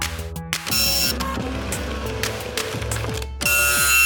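A small receipt printer on a desk in a studio, like a credit card receipt printer, whirs and chatters continuously for about four seconds as it prints something out, its motor whining in short stepped bursts with a brief pause, loud, with no voices.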